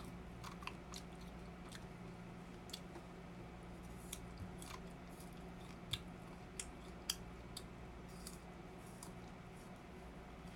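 Someone chews food with loud, irregular smacking and crunchy clicks repeating every second or so over a steady low hum, with no one talking.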